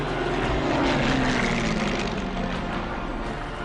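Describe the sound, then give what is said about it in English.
A loud, steady droning of propeller planes flying overhead in huge formations over Paris on VE Day, their engine tones overlapping and slowly shifting in pitch, filling the whole clip with no voices. “Everyone is out on the streets, planes zooming overhead in huge formations.”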